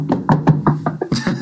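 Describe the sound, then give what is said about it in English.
Knocking on wood: about six quick, even raps in a steady rhythm, each a short hollow thud, followed by a brief wash of rustling noise. No one speaks. “I'm knocking on something made out of wood right now.”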